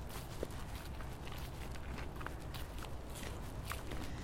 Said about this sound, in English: The forest always seems so quieter in the winter, not as lively. I do like the crunch noise, though.